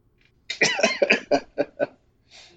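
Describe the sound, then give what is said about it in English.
A loud fit of coughing: a rapid cluster of harsh coughs that trails into a few shorter, spaced-out hacks, ending with a soft breathy exhale. No one speaks. “Oh, son of a bitch, I'm coughing.”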